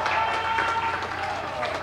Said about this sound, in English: And he got an applause. He got an applause.